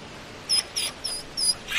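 A stray dog at the door of a small restaurant whimpers and cries in a series of five thin, high-pitched squeals, each short and evenly spaced, fairly quiet, with no one speaking.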